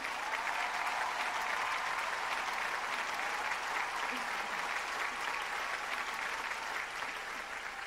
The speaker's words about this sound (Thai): ยืนขึ้นครับและรับเสียงปรบมือจากคนในฮอล์หน่อยครับผม